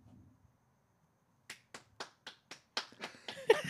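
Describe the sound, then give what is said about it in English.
After a moment of near silence, a lone pair of hands starts clapping as a band stops playing: about nine sharp, crisp claps in a quick, fairly even rhythm, with no voices. “This is literally what it sounded like every time the band would stop playing.”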